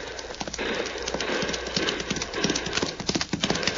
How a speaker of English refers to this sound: Mother me, that's a fast horse that hombre rides, Cisco. Si, very fast, Pancho.